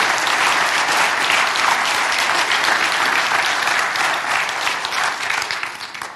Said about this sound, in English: We ask the question, how did we see God move in 2019? Give a shout or a clap if we saw God move in 2019. Amen.